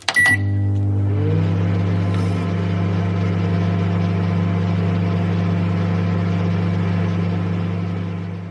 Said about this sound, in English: A microwave, well done,